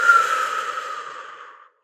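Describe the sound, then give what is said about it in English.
A single long, airy deep breath drawn in through the mouth, a steady breathy hiss lasting about a second and a half before fading out, with no talking. “Let's begin by imagining you have a straw in your mouth and take a deep breath in through your mouth.”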